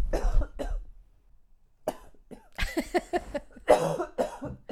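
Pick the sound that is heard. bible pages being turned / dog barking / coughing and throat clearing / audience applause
coughing and throat clearing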